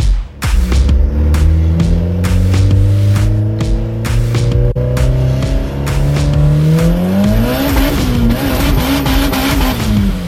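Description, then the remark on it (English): A car engine revs loudly and steadily, its pitch climbing in long sweeps before dipping and rising again, with sharp clicks and pops over the roar and no talking. “That time, a recording of his cousin's car, B20”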